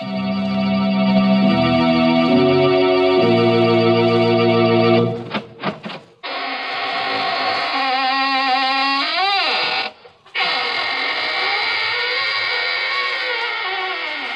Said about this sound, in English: This is your host, opening the squeaking door for another session of the AGGMS, the Association of Ghouls, Ghosts, and Midnight Spirits.